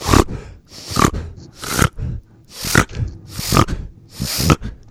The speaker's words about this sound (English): Okay, a reverse sneeze. It happens in hound dogs. It sounds a little something like this.